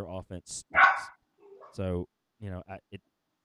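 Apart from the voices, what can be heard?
dog barking excitedly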